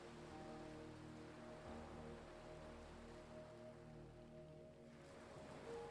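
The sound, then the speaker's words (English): A steady, rushing wash of ocean surf against the shore, continuous rather than distinct swells, with a soft sustained musical drone underneath and no voices. “Imagine yourself standing on the fine white sand and listening to the sound of waves breaking against the shore.”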